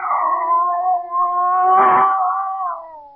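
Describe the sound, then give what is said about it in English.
A scrawny cat, Clara, yowls in one long, drawn-out wail by a stove as it faces a bushmaster snake, back arched and hair on end; the wail is loud, its pitch wavering and swelling midway before tapering off. No one speaks. “There was a cat.”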